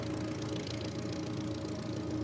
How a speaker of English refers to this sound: And my dad revs the engine, checks the airplane, and we go.